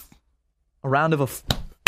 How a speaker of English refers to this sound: A round of applause. Why am I clapping for Anthony Hopkins? Because he was in the most recent Transformers movie.